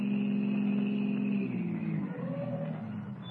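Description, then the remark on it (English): A car engine hums steadily, then its pitch drops and the drone settles lower as the car, carrying three men, turns off the Conway Turnpike and slows to a stop on a well-hidden wagon road, with no voices. “turns off the Conway Turnpike and comes to a stop on a well-hidden wagon road.”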